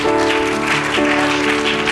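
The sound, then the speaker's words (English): A church audience gives the Lord a hand clap of praise, welcoming a preacher to the pulpit, in a steady, dense wash of applause, with sustained organ or keyboard chords holding underneath throughout. No one speaks. “Would you give the Lord a hand clap of praise as we welcome the man of God to this pulpit today?”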